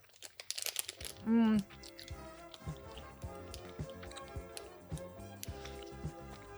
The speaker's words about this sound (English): I can tell you right now, they feel kind of hard. They're like a hard, like a jelly candy. Not even a candy, like a fruit snack. Okay. Okay. Yeah. All right. I'm eating it. Sorry for the chewing noises.